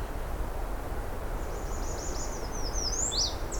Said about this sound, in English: Whereas that's American redstart.